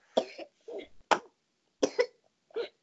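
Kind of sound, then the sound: human body sound, child coughing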